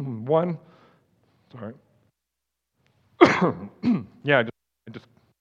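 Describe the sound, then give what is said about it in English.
A few harsh coughs and throat-clearing noises close to the microphone, loud and abrupt, coming in short separate bursts with brief pauses between them. “I just coughed right into your ears with my microphone.”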